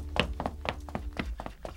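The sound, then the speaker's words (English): Knocking at the back door: about seven hollow, moderately loud raps in a steady, slightly uneven rhythm, with no voices over them. “someone's at the back door.”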